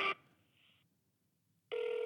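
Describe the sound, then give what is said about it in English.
A telephone line ringback tone sounds loudly while a call to a crisis counselor line is placed: a brief burst, a quiet pause, then the ring resuming abruptly at full volume. It rings once and then disconnects. It sounds slightly thin, like audio over a phone line, with no talking. “It rang once and then it disconnected.”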